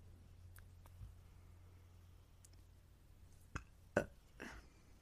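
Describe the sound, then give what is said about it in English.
A small, brief burp, a few quick throaty bursts over a low steady hum, with no talking. “That wasn't as big as I thought it was gonna be. My burp,”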